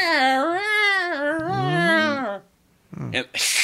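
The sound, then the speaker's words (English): A person mimics a screeching cat with a long, wavering, high-pitched yowl that bends up and down for about two seconds, followed by a short pause and a brief burst of voice. “Because I call them like mini screeching canning balls. Yeah. Yep. Yeah, they just go like.”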